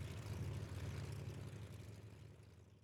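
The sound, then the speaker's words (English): A steady, droning airplane engine with a deep, rumbling low end and a broad hiss above it, holding constant and then slowly fading slightly, with no voices. It is the airplane carrying British Prime Minister Chamberlain on his first flight, to meet Hitler at the Berghof. “And so, the British Prime Minister boarded an airplane for the first time, began to sweat, and gripped the arms of his seat to set course for a fateful meeting.”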